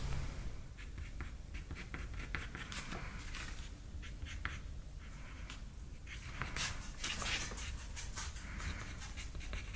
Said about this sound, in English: using a brown colored pencil to lightly block out the placement of the letters before I go in too heavy